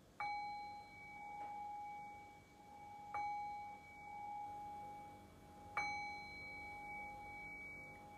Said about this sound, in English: And so I'll ring the sound of the bell here to bring us back into a conversational space.